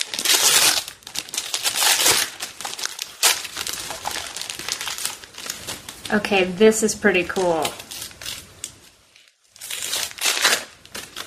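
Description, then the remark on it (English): Crinkly packaging rustles and crackles in bursts as it is unwrapped from a sparkly glass bottle, with a brief spoken comment in the middle before the crinkling resumes. “So I've got an interesting package here.”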